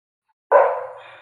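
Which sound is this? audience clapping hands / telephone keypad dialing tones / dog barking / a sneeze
dog barking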